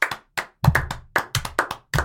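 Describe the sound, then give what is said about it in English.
A few hands clapping, about a dozen sharp claps in a quick, slightly uneven rhythm, some with a dull thump beneath, with no voices. “You're going to stand up and You didn't clap.”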